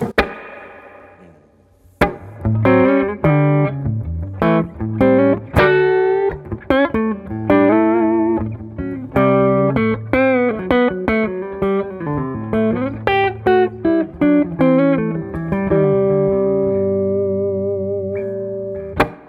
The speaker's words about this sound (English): Yeah. So that's a tube. Tube reverb unit. Yeah. And it does much more subtle stuff too. Yeah, but it definitely has more flexibility than say a Fender. Yeah, it's reverb much unit. Warmer. It's got a bunch more bottom in the tone knob alone.